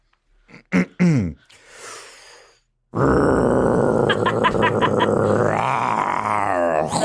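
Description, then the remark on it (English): A person vocally imitates a chainsaw: a couple of short sputtering pulls, a pause, then a loud, sustained rasping buzz with revving pulses that holds to the end, alone. “do a chainsaw”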